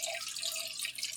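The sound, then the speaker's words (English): The last batch of water is dumped out into a sink, a continuous hissing pour with a faint trickling edge, fairly loud, with no voices over it. “Okay, I'm dumping out my last water stop.”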